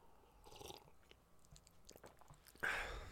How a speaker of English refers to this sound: All right, I got to take a sip. Hold on.